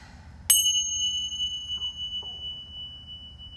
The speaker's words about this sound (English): Ring the bell.